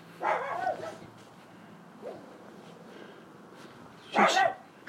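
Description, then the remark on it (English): A dog barks twice, a few seconds apart, with a faint yip between, each bark short and sharp against a steady outdoor background hiss. “If I was to say I could kill that dog, people might misunderstand.”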